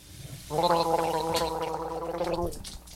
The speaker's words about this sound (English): Oh, excuse me. I was just, hopping out of a cold prison shower and washing my spicy mouth out with milk.